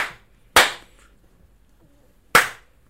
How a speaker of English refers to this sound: That was a delayed third slap, so... 2.5? Two and a delayed three? Two and a delayed three, yeah.